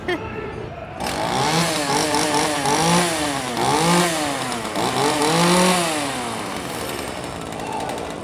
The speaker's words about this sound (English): And then we have regular chainsaws that do run, but we fix the blades and extend them so they're lighter and they won't cut or hurt anybody.